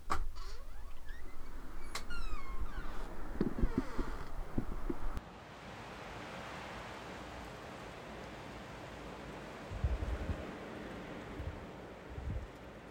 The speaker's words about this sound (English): Why don't we walk outside for a little bit and listen to waves for a minute? Just listening to life fully in this moment.